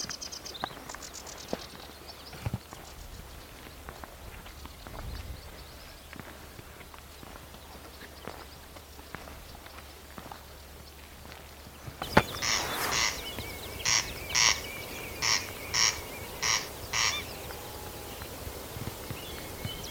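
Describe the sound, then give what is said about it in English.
A corncrake on the island of Tiree calls in the second half from the other side of a field, a loud, dry rasping note repeated about seven times at a steady rhythm, following a stretch of quiet background hiss with faint ticks. “A quest to hear the mysterious corncrake on the island of Tiree”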